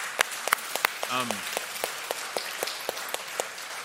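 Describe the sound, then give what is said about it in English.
Scattered, irregular clapping from a crowd, sharp separate claps rather than a full roar of applause, with a brief voice cutting in partway through. The clapping is for the city group, coaching group and explore group leaders, who have been asked to stand up. “Yeah, please clap.”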